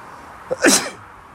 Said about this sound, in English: I sneezed.